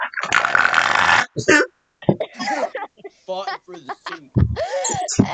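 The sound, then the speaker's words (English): A person lets out a loud, rough, throaty growl lasting about a second, followed by a few short vocal bursts and people talking. “Wait, …, do your growl.”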